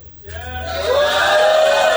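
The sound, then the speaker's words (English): An audience bursts into loud, sustained yelling after a brief quiet moment, answering that they were not aware there are some 20,000 sex educators in the city; a dense mix of pitches holding steady to the end. “Yell really loud if no, you're not aware of that.”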